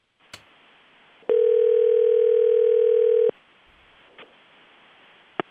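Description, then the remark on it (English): A steady telephone dial tone after a dropped call with Sam Hinkie hums loudly for about two seconds, bracketed by sharp clicks of a handset being hung up, with a few more faint clicks in otherwise quiet surroundings. “I'm gonna hang up the phone in case he calls back.”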